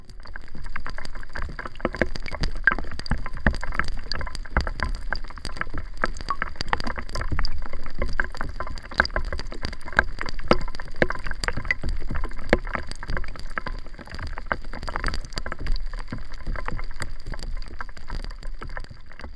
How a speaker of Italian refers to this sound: Sì, so delle gocce, ma registrate sott'acqua. Ebbene sì, esistono microfoni che ci permettono di catturare i suoni sotto la superficie dell'acqua.